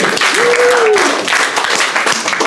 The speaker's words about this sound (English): I'm really excited to have him here tonight. Let's give a round of applause going for him right now, everybody.